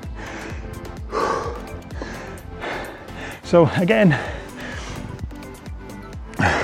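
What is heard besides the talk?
heavy breathing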